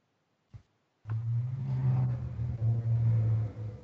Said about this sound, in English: As cars go very, very loudly by.